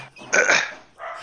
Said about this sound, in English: my dogs are feeling pretty woofy today, so I gotta. No worries. I gotta politely ask them to stop barking. Hey, dogs, could you please stop barking? Thank you.